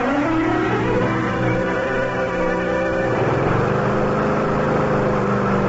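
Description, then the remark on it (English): A lawn mower engine, being used to mow the lawn, drones loudly and steadily with no voices, its buzzing tone rising slightly at first and then dropping to a lower, rougher pitch partway through. “Yeah, just mowing the lawn, Mr.”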